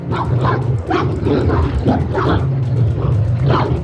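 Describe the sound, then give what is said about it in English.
A large beast snarls and growls ferociously in continuous bursts, its rough, guttural vocalizations rising and falling as it pounces on a woman just before she reaches a water tower ladder, bearing her down, with no voices present. “The beast pounces. Just before she reaches the ladder, bearing her down.”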